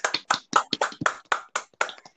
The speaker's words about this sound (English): Let's get a little round of applause.